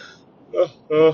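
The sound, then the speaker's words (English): A yawn heard as two short voiced bursts, the second slightly longer and fuller, rising out of quiet with no talking around it. “There's the infamous yawn.”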